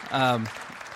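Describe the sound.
An audience of students at a church youth group claps in a steady, diffuse wash of applause lasting about a second, with a single voice ringing out loudly near the start as the clapping continues.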